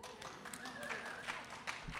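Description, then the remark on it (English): Scattered audience applause at a St. Paul Almanac poetry reading at the Java Express, a fairly soft patter of many hands clapping at once, with a faint voice murmuring underneath. “Applaud.”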